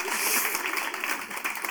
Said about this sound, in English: Where are they? Woo, a little clap for them as well.